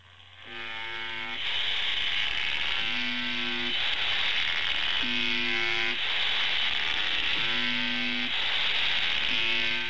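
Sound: electric buzzer buzzing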